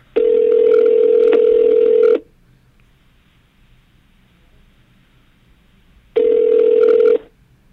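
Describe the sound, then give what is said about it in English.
A phone ringback tone as a call is placed to a man: a steady electronic burst of about two seconds, a four-second pause, then a second identical burst, loud and clear with no talking. “I said I'd call him in. So if he doesn't answer, that's his dedication.”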